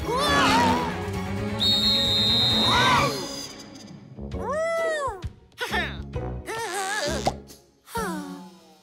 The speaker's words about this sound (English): When things get too zoomy, there's just one thing to do. Whistle real loud for thing one and thing two.